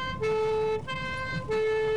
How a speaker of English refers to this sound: even down to the rhythm of it, da, da, da, da, which is a bit like a British police car.